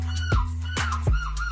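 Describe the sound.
A man's voice imitates a seagull, as done on stage in a bar at a human seagull championship, letting out a string of loud, harsh squawking calls with sharp downward-sweeping cries in a quick, uneven rhythm, like a gull's laughing call.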